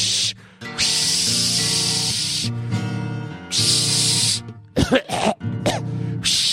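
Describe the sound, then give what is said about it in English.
A voice imitates wind rushing through pine trees as part of a song, making long, loud, airy whooshing bursts over steady, droning musical tones, ending in a few shorter, choppier gusts. “Would you stop that swishing noise? It's part of my song. Haven't you ever heard wind rushing through the pine trees?”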